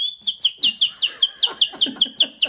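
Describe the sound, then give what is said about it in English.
A man whistles a quick, rhythmic run of about a dozen short, high notes at a nearly steady pitch. The whistling is clear and fairly loud, with no talking. “So I heard you were an awful man for whistling before.”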